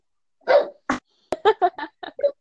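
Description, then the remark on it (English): A big dog lets out a quick series of loud barks, about eight sharp woofs in a rapid, uneven rhythm with no talking over them. “So we have the dog in the background.”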